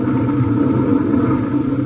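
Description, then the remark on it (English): A car engine rumbles steadily, a continuous low, throaty drone with no pauses and no voices, as a car drives out of a garage attached to a house. “He drives out and you don't do nothing?”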